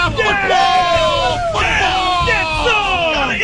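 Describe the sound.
A loud football sounder on the radio station 1500 ESPN, several voices yelling and whooping together, with sweeping, rising and falling shouts layered densely over a steady crowd roar for a few seconds.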